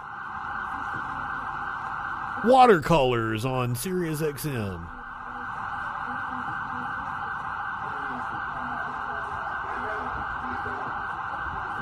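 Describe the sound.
Emergency vehicle sirens blare steadily in the background for the whole stretch, loud and continuous, while a man's voice briefly speaks over them near the start.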